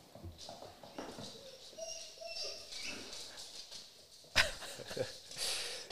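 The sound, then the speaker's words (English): Dogs make a commotion, with whiny high-pitched yelps and a sharp, loud bark-like burst near the end, set against a faint background hum. “Yeah, it took everything in me as a Somali not to let those dogs scare me to death, I'll tell you that much.”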